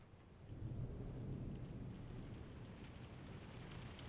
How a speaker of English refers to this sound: The storm begins to ascend upon Opelousas. Light drizzle turns to heavy hail. Moderate winds now intensify.